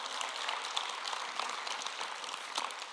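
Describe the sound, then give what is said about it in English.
An audience clapping their hands to the Lord in the morning, a dense, steady patter of many overlapping claps that holds at an even loudness for the whole stretch, with no voices over it. “Somebody clap your hands this morning to the Lord.”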